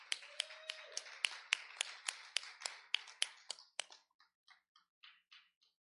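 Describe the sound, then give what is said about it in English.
A church audience claps for the fathers on Father's Day before morning worship, in a steady, even rhythm, about a dozen sharp beats, then the clapping thins into a few softer, scattered claps before fading out. Nobody speaks. “Let's give all the dads a hand clap today.”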